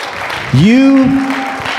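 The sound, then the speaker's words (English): An audience claps steadily, a dense crackling wash of applause, while midway a loud rising vocal tone, like a cheer or whoop, swells and holds over it before fading back into the clapping. “If that's for you, stand to your feet and clap your hands.”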